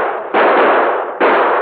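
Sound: gunshots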